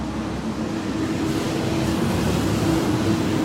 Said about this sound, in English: We can let this truck pass us by.